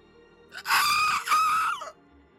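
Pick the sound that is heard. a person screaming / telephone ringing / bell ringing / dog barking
a person screaming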